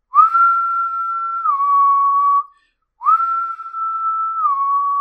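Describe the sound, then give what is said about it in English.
Two long, sustained whistled notes, each holding a steady mid pitch before dipping slightly lower, separated by a brief pause. The slow, drawn-out tone sounds eerie and unsettling, with no talking. “the thunder works too, but the whistle, there's something about it, it just...”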